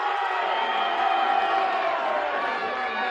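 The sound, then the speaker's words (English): A large arena wrestling crowd roars and cheers steadily for about three seconds for wrestler the Junkyard Dog, chosen as opponent for the North American title. A dense, loud wall of voices with scattered whoops and no break or lull. “Or would the audience prefer the Junkyard Dog?”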